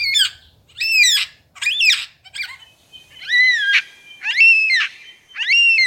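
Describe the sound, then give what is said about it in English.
A superb lyrebird mimics the wailing call of a yellow-tailed black cockatoo: about seven loud, drawn-out, high screeches with a rising-then-falling pitch, repeated in quick succession with no talking. “Here's his impression of a yellow-tailed black cockatoo. First, you'll hear the lyrebird, and then the bird that he's mimicking.”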